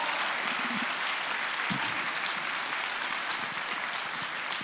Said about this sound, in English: And can I just ask you for a moment just to give a huge round of applause for your pastors, for your leaders. Can we honor them?